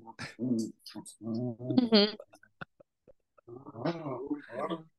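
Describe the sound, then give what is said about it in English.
A male dog whimpers and whines in a series of short, pitched, nasal cries, with a few soft clicks in a brief pause before the whining resumes. “The dog.”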